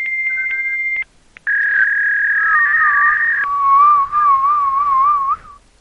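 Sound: person attempting to whistle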